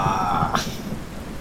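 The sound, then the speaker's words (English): Steady rain hisses over a low, rolling rumble of thunder, with a brief brighter swell midway, the storm continuous and coming in from the sea, with no voices. “Obviously, the storm is coming in from the sea, but for all you know, the person who summoned it could be in the city.”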